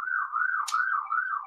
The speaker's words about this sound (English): Hey, we're about to get arrested. No, it's an ambulance.